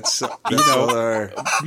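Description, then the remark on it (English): Chickens cluck loudly: a few short clucks, then a drawn-out, wavering squawk and a couple of quick clucks at the end, all within under two seconds. “And then the chickens.”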